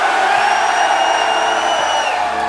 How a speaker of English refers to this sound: I want everyone in this crowd to say, hell yeah. Do you want some more?